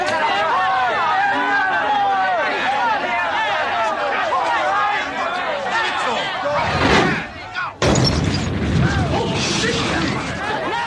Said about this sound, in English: And it's one of those moments where they all start to sort of run off, and, you know, and then the car explodes and they manage to run for the subway.